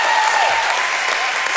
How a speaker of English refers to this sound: Let's give a bigger clap for Jesus. Come on, can we give more for Jesus?